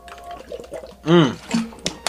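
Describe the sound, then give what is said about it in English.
Someone drinks water, with a few wet sips and gulps followed by a short voiced exhale of satisfaction, all within a couple of seconds. “Water is so good.”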